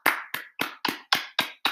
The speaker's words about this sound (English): Fellas, let's give this man a round of applause real quick.